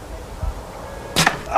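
A single sharp thwack of an arrow striking a target, fairly loud, preceded by a faint swish and a quiet background with no talking.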